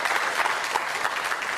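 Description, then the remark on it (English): An audience claps steadily, a dense and even patter of many hands that holds at the same loudness throughout, with no voices over it. “You can clap that one.”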